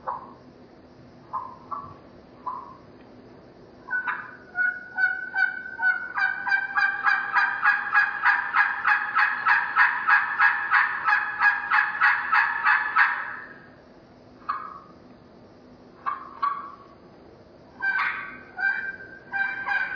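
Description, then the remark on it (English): The second caller in a turkey-calling contest imitates an adult turkey hen's assembly yell: a long, steady run of loud, raspy yelps that builds into a rapid rhythmic series, trailing off, with a few scattered yelps before and after. “Caller number two, your adult hen assembly yell.”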